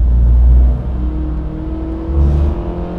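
A car engine roars loudly, revving hard as it accelerates to pass a truck, easing briefly, then surging again with a steady rumbling drone. No one speaks.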